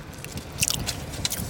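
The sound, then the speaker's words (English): Crunchy chewing of hard candy, with sharp cracking bursts as it breaks between the teeth, followed by steady grinding and crunching, no talking. “So I'm going to chew up this hard candy.”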